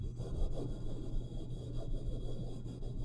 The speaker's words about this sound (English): So it's like, hey guys, welcome to another episode of White Chicks Doing Freaky Shit to Mics. Today I'm going to scratch my mic.